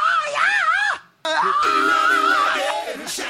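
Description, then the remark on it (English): A male singer's high, piercing sung shriek with a strong ringing overtone from a nasal note, held loud for nearly a second, then after a short break a second long wavering shriek that trails off. “Anyway, he does that in almost every one of his like high shrieks.”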